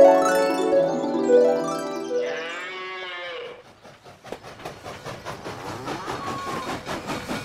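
A cow moos loudly and at length, then a train rolls past on a track running straight through a field of cows, with a steady, rhythmic clatter of wheels on the track, moderately loud. No one speaks.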